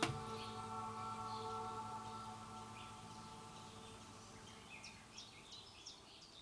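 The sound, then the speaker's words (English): Birds chirp in short, scattered bursts over a steady, soft hiss of gentle rain at a little house in the countryside. A faint tonal hum fades out early on, and the calls grow more frequent toward the end. “yes, that is the sweet sound of birds chirping and rain gently falling in the background.”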